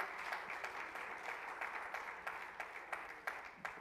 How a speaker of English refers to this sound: Oh, let's clap our hands and praise the Lord this morning.